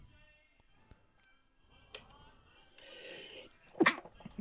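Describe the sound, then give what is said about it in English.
A single loud sneeze bursts out near the end, preceded by a short breathy intake, with a few faint taps in the quiet before it. “Bless you. Thank you.”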